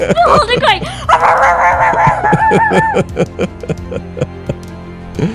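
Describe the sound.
A human voice mimics a dog, starting with drawn-out yelping and whining sounds, then breaking into a quick run of short, sharp barks that trail off, fairly loud.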